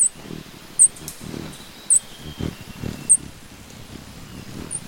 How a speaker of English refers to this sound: This place is home to over 400 bird species, including this black-breasted pufflick, a blue-green hummingbird with white leg feathers.